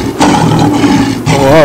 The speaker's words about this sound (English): You know what would be good is to play these angry lions some.